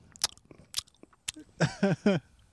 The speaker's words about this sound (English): Stop fucking chewing then. I'm not chewing. You fucking heard that, didn't you? Like, yeah, because you were actually loud enough.